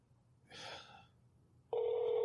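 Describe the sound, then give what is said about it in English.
A short breathy gasp, then a cell phone call begins ringing as a man calls someone on his cell phone: a loud, steady electronic tone that starts abruptly near the end and holds without a break. “Have to call him on my cell phone to let him know I'm going to call him on Skype.”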